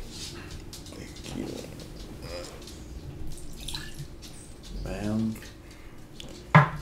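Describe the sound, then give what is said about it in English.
Irish whiskey glugs and trickles as a shot is poured into a glass, with a brief sharp clink near the end and faint voices murmuring in the background. “You want to pour a shot in here and throw your glass?”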